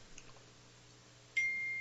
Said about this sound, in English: Oh, sorry, got no problem. Freaking cell phone going off.